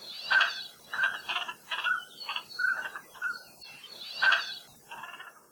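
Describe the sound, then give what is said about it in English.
Calls of pintail ducks (koloa māpu) in Hawaii repeat in an uneven rhythm, short nasal bursts with whistly high tones, two louder calls standing out near the start and end, with no voices. “In Hawaiian, koloa means duck, and māpu means windblown, or wafted in with the wind, perhaps because they would regularly show up in Hawaii with the trade winds every August, making their very duck-like calls.”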